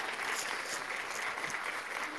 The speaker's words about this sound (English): That was a clap.